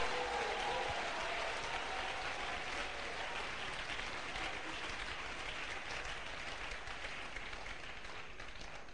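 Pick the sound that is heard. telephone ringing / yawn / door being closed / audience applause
audience applause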